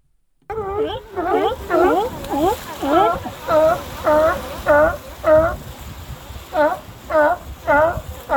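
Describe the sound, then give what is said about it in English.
A chorus of California sea lions barking repeatedly in short, harsh honks, several animals overlapping with a steady, rhythmic pulse and a faint background wash. “California sea lions, with their familiar barking call, are ubiquitous along the coast, but there may be nowhere where you can see them at such close quarters as at Monterey's Coast Guard Pier.”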